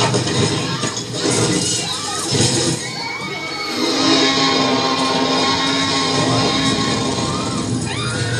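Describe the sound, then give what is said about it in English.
A crowd of people at a drive-in movie scream and shout at once as they run from a Tyrannosaurus, a loud, continuous wall of overlapping yelling voices with rising cries cutting through, sustained for several seconds. “And everybody starts running. People are screaming.”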